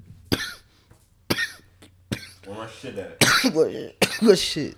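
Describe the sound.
Three sharp, close coughs spaced about a second apart, followed by a harsher fit of hacking coughs tangled up with someone's voice.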